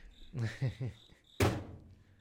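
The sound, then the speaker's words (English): A cricket chirps steadily in the background throughout, faint but constant, while a voice speaks briefly at the start and a single sharp thunk lands partway through. “Cricket does not care. It's going, like, it's steady going.”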